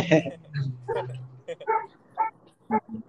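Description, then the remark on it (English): A dog yips and barks in short bursts, with a whimpering tone, mixed in with people talking; the barks are moderately loud and irregularly spaced. “Hey, I hear your dog.”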